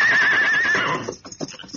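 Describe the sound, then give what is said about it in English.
Silver, a horse, gives a loud whinny with a wavering high pitch lasting under a second, at dusk near a camp in a wooded gully, then fades into low snorting and a few soft hoof-like thumps. “Sounds like silver.”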